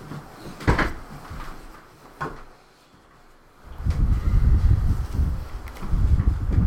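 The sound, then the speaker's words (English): Chairs being shifted around as people switch seats: a couple of sharp knocks, then a longer stretch of low scraping and bumping as furniture drags across the floor. No one speaks. “Alright, we'll switch. Chairs.”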